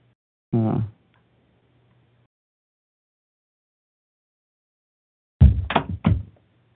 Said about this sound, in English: Yeah, it's just a door.